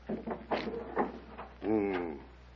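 The door to Timur's private chamber being opened: a few quick wooden knocks and rattles of the latch, then a drawn-out, wavering creak of the hinges, fairly quiet.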